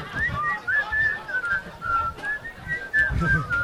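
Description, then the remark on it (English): A person whistles a slow, wavering melody in a string of short connected phrases, fairly clear, over a low rumbling background. “I take you as the kind of guy, you're walking to get a pack of cigarettes, I picture you whistling.”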